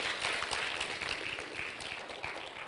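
A crowd applauds steadily, many hands clapping in a dense, continuous wash of sharp claps that holds at an even loudness throughout, with no voices standing out.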